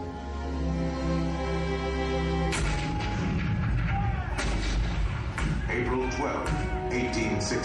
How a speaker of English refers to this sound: April 12, 1861, Fort Sumter. The cannons spoke for war. Civil war.